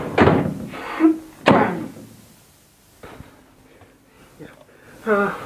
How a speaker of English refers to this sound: I'm just checking, just closing the door, everything.